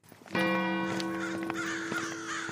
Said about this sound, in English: So we are on the approach to Madingley Hall now. The sun is down, there are crows flying around, and it's looking very impressive and ever so slightly spooky.